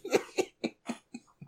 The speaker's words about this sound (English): Clearing my throat. It's coming my throat. Clear.